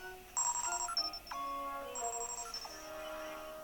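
A futuristic in-game communicator device, the Copad, rings for an incoming transmission with a bright electronic ringtone, two repeating bursts of high, tonal chimes and sliding beeps, clear with no voices.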